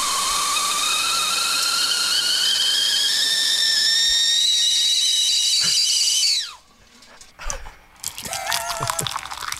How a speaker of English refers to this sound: please take the horrible kettle whistle off the effing podcast